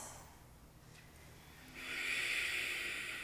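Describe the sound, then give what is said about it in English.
A short hiss of breath at the start, then a loud, forceful ujjayi exhale during yoga that builds and holds, rushing and airy, with no talking. “Now, louder just to be more powerful, more intentional in the breathing, so that there's no other choice you have to think of anything else.”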